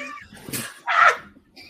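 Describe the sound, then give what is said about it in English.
A puppy gives a few high, whiny whimpers and one sharp yelping bark, fairly loud, with faint squeaky sounds around it and no talking. “I wanted a guitar and I got a puppy.”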